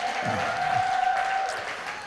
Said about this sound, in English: Come on, let's give the Lord a good hand. Come on, keep clapping a little bit.